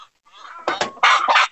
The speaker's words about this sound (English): There we go. Now you're talking. Now you're bragging. Yep, letting us know you just laid an egg.